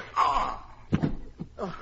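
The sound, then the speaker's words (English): A strained, drawn-out groan gives way to a single sharp, thudding blow that knocks a man out, followed by a couple of short pained grunts, all fairly loud. “I knocked him out.”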